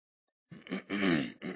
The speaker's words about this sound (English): And in chapter 16, excuse me, I have a hard time clearing my throat here.